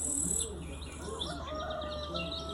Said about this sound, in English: Oh, dog, there's a rooster over there.